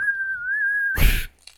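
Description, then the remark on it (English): Someone attempts to whistle, holding one steady, slightly wavering note for about a second, then it breaks into a loud breathy rush of air before trailing off. “Why can't I whistle?”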